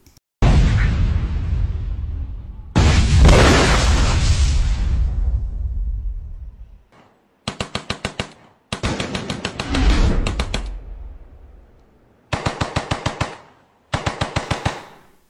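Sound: gunfire and explosions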